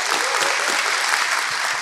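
Steady, dense applause from a small group fills the whole moment, a continuous loud patter of many hands clapping at once with no talking over it.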